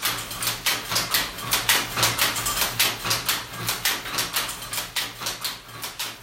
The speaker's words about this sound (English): There the yarn is dropped at a small shed that overlooks the harbour, from where on most days you will hear the distinctive music of old Hattersley footlooms.